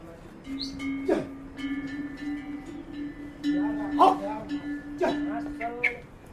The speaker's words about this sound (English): I remember the recurring sound of bells from the donkey trains carrying various loads along the trail. Sometimes, depending on the terrain, we would catch just an echo of donkey bells way off in the distance.